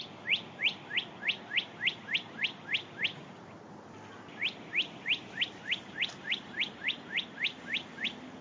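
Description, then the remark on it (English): Birds chirping in the evening in Pennsylvania: a quick, steady series of bright, rising chirps, about ten in a row, then a brief pause and another evenly paced run. Clear, with no talking. “He got out of his car and then he recorded this, birds chirping away in the evening.”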